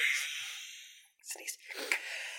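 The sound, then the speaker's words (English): A sneeze: a sharp, hissy burst of breath that trails off over a second, followed after a brief pause by a few shorter snuffling, breathy noises. “Bless you, he's a big boy.”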